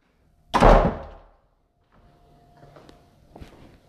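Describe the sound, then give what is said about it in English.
A heavy door, the door of Noah's ark being shut, slams shut with one loud, booming thud that rings out and fades, followed by quieter shuffling and a couple of faint knocks. “God has shut the door.”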